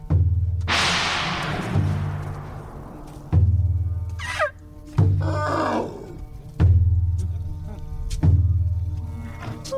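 Trained elephants at the Thai Elephant Conservation Center in Lampang Province, Thailand, bang out loose, repeated percussion on resonant metal and wooden tools confiscated from illegal loggers, with ringing low thumps and a crashing clang, while high trumpeting calls rise over the clattering rhythm.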